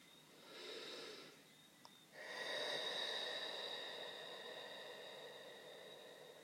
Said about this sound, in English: I love taking deep breaths. Anywhere, any place, with anyone. I love it. It feels so great. It just comes up sometimes and I just allow it.